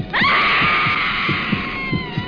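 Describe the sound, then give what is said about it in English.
A long, shrill scream rises sharply and holds steady for a couple of seconds, loud, over a low throbbing heartbeat-like pulse pounding at a steady rhythm underneath, in a trailer for the horror film Blood Mania, a Crown International release. “Blood mania rips the screams right out of your throat.”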